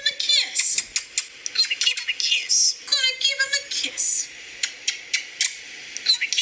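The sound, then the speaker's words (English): A bird runs through a rapid, varied stream of mimicked animal calls: sharp clicks, high chirps, rising and falling whistles and buzzy trills, loud and nearly continuous with brief gaps. “So that's the bird, by the way.”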